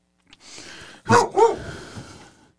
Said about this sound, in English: I don't know what Duke the dog is barking at. He just got a hair up his ass.